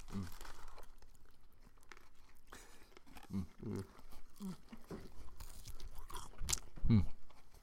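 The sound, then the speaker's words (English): Steady chewing and crunching of fast food, with soft wrapper crinkles and occasional bites over several seconds, fairly quiet apart from a few sharper crunches and rustles near the end. “Like, listening to us, like, quietly, like, Wait, let's just quietly eat for, like, a minute.”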